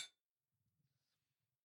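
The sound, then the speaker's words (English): Two glasses of 12-year-old whiskey clink together once in a bright, sharp toast that rings briefly and fades fast, followed by faint low rustling and handling sounds. “It is a beautiful coloured whiskey. I have already tasted this. Moraine has not. So cheers.”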